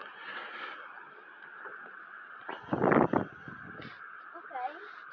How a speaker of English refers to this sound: Oh, there's some geese. Only two of them.